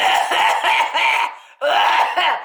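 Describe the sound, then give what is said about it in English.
A voice imitates coughing: a quick run of harsh, rhythmic coughs, a brief pause, then a second burst of rapid coughs, loud and dry, imitating a man coughing while holding a cup of tea in front of his face. “Anyways, as he's holding it in front of his face while I get in, he's coughing.”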